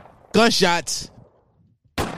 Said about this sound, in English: I just realized I was like, yo, y'all got a bomb in here? Ain't no bomb. It's just gunshots. It's a gunshot, which is good enough, I guess.